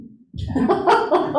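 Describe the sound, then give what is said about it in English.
A dog chews on a pumpkin stem, with wet, gnawing crunches repeating in quick, uneven bursts and a low rumble underneath. No one speaks. “This is a very enlightened being right here, chewing on the stem of a pumpkin.”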